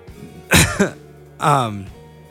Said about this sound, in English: sorry for coughing like directly in the mic.